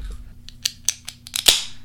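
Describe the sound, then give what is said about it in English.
A can of non-alcoholic beer being opened: a few small, quick metallic clicks, then a sharper crack as the tab gives, followed by a brief fading fizz. No voices. “Do you think non-alcoholic beer sounds different when you open it?”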